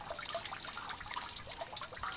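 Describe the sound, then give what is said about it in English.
Steady patter of rain, a dense hiss of countless small droplets with brief sharper ticks scattered through it, moderately loud and unbroken, with no voices, falling just as a performance was about to start. “It started raining just as the performance was about to start, so it made it a little bit harder to hear the sounds, like the other sounds, so to speak.”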